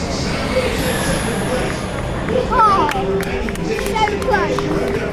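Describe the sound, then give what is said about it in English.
A loud, continuous wash of crowd noise at a Formula E race as Nelson Piquet Jr. becomes the inaugural Formula E champion, with overlapping shouts and cheers rising and falling over a dense, steady roar; a few sharper whistle-like calls cut through. “It's great to hear the crowd reaction, actually.”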